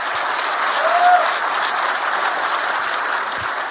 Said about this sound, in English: Good night, John. And then, yeah, a round of applause for John.